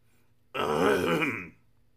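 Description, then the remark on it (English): A single gruff, drawn-out throat clearing, lasting about a second and rising loud before trailing off, with no talking around it. “Roared the gateman, clearing his throat and snapping smartly to attention.”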